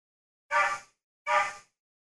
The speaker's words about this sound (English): That's the other neighbor's dog. It has to be the worst bark I have ever heard in my life. Okay. That's that dog's bark.